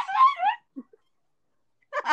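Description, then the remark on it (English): In a video game, a dying, dog-like creature lets out a wavering, high whimpering wail, then two faint short yelps, and after a brief silence a harsher, raspy cry rises again. “Some kind of dying dog or something.”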